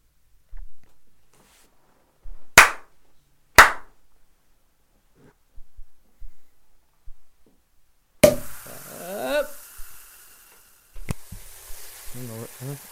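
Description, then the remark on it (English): Two sharp, loud hand slaps about a second apart, a stretch of soft thuds, then a rough, scraping mic rub followed by a quick double finger snap. “So I basically got 2 slaps, a double snap, and a mic rub.”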